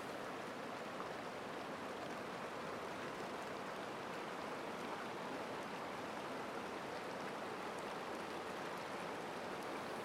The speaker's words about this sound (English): Allow them to come, and allow them to pass like the water in the stream here in front of you.